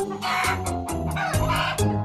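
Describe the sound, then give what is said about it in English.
Loud chicken calls from a family of free-roaming chickens on a downtown Main Street: a rapid series of harsh, raspy cackling bursts with a ringing tone, repeating roughly every quarter second with no pauses and no talking. “You're very well likely to drive up to a red light on Main Street downtown, and as you stop, see a family of chickens go across the road.”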